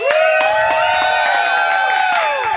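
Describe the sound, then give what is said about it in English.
A newsroom crowd bursts into loud cheering, with sustained overlapping yells and whoops that rise and fall in pitch, punctuated by sharp claps throughout. “There is a moment of silence as the camera switches off, but then the newsroom erupts in cheers.”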